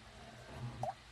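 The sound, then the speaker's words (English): Syrupy water, nothing alcoholic, drips and plops, a soft wet squish followed by a brighter blip near the end, with a steady low hum underneath and no voices. “Okay, that was just syrupy water, guys. That wasn't anything alcoholic or adult-like.”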